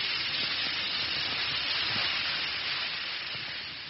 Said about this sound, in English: That's the only way to find out about the wonderful relief Alka-Seltzer brings. Just drop a tablet or two into a glass of water like this. Listen to it fizz.